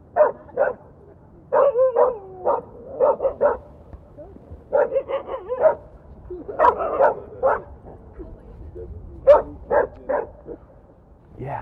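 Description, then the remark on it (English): A dog barks repeatedly in quick clusters of sharp woofs, pausing briefly between bursts, with a few higher yipping barks mixed in throughout. “She kind of feeds off the energy of the other dog.”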